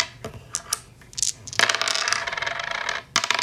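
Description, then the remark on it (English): Dice are rolled on a table: a few sharp clicks first, then a longer rattling roll that stops, followed by one more clack. Fairly loud, with no voices. “Can you roll a dice? Can you roll them?”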